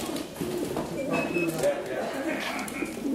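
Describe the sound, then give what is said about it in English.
Racing pigeons coo steadily in a dense, murmuring flock on a Friday evening in Clondalkin, the day before a race, as their chip rings are scanned, their soft throaty calls overlapping, with faint human voices and a busy background hum underneath. “There's a chip attached to the pigeon's foot that IDs the owner and records the race time.”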